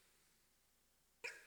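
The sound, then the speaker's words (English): A single sharp sneeze from an audience member bursts out abruptly after a stretch of quiet room tone, brief and fairly loud, with no talking around it. “Bless you.”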